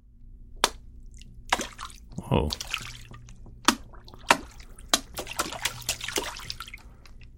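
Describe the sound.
Fingers flick into water again and again in an uneven rhythm, played to get a bass sound, making splashy plops. One deeper, bassier plop stands out early, and a voice briefly exclaims.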